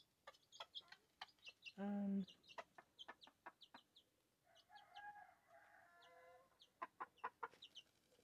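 A hen clucks near a brood of chicks peeping rapidly and repeatedly, with one loud, low squawk early on and a longer, drawn-out hen call partway through.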